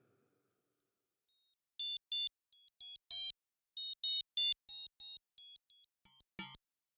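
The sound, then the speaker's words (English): A phone gives a string of short electronic beeps as it is put on privacy mode, starting with two clean single tones and then a quick, uneven run of brighter, buzzier bleeps that grow louder toward the end. “Let me put my phone on privacy mode before you go and start asking for your kind of favors. A few beeps are heard.”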